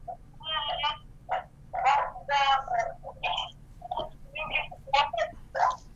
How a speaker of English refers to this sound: I can't hardly hear you. You coming in real static. I don't think it's gonna work, brother.